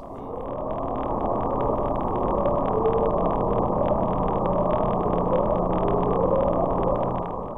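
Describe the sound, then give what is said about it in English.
An underwater ocean recording of the upsweep: a steady wash of low rumbling hiss, with faint tonal sweeps that rise in pitch again and again throughout. No voices. “We're going to catch this goddamn Bloop. Like, here is the upsweep.”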